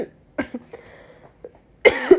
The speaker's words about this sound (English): Anytime I'm like talking a lot, I start coughing. It's just sinus infection that I'm getting over.